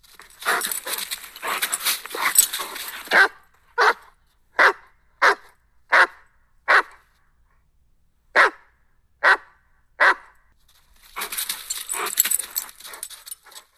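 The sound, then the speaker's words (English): A dog named Mac barks sharply and loudly into the microphone, about eight single barks spaced evenly with brief pauses, framed by rustling, jangling handling noise before and after. “All right, well, just to eat up some time, I'm just going to have Mac bark a few times into the microphone.”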